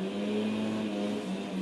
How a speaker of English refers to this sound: Yes, we got leaf blowers here.